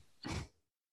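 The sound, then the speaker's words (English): A single short, gruff throat clearing by a person turned away from the microphone, a rough burst lasting under half a second, then quiet. No one speaks. “I thought I had to cough, and I wanted to turn away from the mic.”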